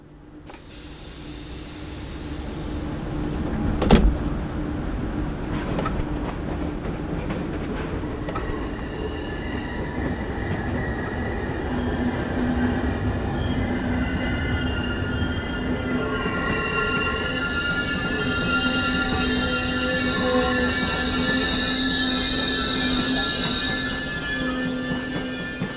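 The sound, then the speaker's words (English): A train rolls steadily along the rails, its wheels letting out sustained high-pitched squeals and metallic whines over a constant low rumble, with a sharp clank near the start. “Misha is sitting on the train and the person next to him disappears.”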